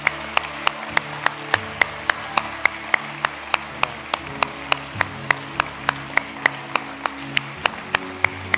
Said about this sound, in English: Could we just cheer them and applaud them today for that decision they've made?